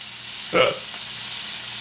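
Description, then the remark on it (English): Burgers sizzle in a frying pan with a steady, crackling hiss that stays even throughout, broken briefly near the middle by a short tonal clink or murmur. “The burgers are going to finish cooking and just with the residual heat of the pan.”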